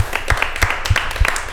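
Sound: applause and clapping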